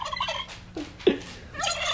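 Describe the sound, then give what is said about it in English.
A turkey gobbles in rapid, warbling bursts, loud, with a short sharp squawk in the middle and the rattling call resuming at the end. “10 hours of turkey gobble.”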